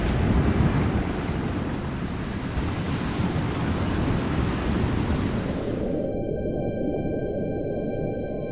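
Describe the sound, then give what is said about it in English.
Crashing ocean waves make a steady, loud roar of churning water, then the sound turns muffled and low, as if heard from beneath the surface. No one speaks. “the monolithic fish reaches the apex of its leap from the waters, twisting its body in pain and slowly crashing down. I am flung out under the waves.”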